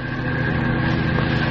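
A car carrying a couple drives along a road south of Richmond in heavy rain; its engine drones steadily, a low, even rumble with a faint mechanical hum layered on top, holding constant loudness throughout with no voices.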